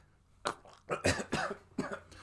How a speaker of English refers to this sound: He's coughing because he knows.